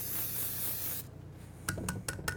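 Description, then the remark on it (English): A steady hiss of pan spray coats a 12-inch cast iron skillet for about a second, then four quick knocks and clatters follow in an uneven rhythm. “All right, so now that that batter's all mixed up, I'm gonna grab my 12-inch skillet, cast iron skillet here. We're gonna hit it with some pan spray.”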